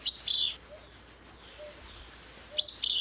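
A willow flycatcher sings its raspy fitz-bew song twice, short buzzy bursts at the start and end with a quiet pause between, clear with no talking.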